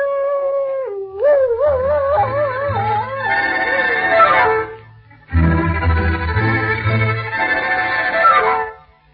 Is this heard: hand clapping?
no